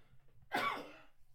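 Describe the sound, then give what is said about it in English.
A single sharp sneeze by someone sitting at a bar during a talk about football: it bursts out suddenly, bright and airy across a wide range, then trails off in a breathy hiss over about half a second. No one speaks during it. “People sneeze at the bar, right? Say God bless you and move on.”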